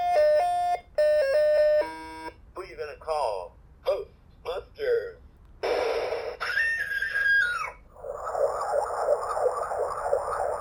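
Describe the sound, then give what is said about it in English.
Tinny electronic board game jingle: a few stepped beeping tones, brief synthetic voice snippets, then a wavering siren-like electronic wail meant as a car siren before a buzzy, crackling burst of sound. “So every time you move, it's like, "Ding, go, move, Ghostbusters."”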